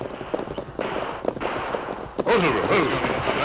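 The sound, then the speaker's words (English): Several gunshots crack out at irregular intervals over a steady wash of noise, the last burst louder and followed by a rumbling, echoing tail, like an exchange of gunfire just over a ridge, about 2 miles from an Indian reservation in the Rainbow Hills. “Hear that gunfire, Tonto?”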